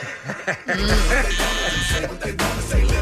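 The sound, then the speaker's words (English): A loud, sustained electronic game buzzer, pressed by a player during a Halloween-song guessing game, blares for a couple of seconds, harsh and steady with bright tonal overtones, then cuts off, with faint chuckling at the edges. “Did you buzz it?”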